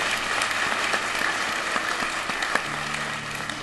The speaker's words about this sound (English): I just told her, I said, yeah, we can applaud it.